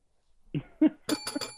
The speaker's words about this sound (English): You get the bell. That's what it is. I mean, did you just ring a fucking bell? Yes, I did. Would you like to hear it again? Because I can do it again.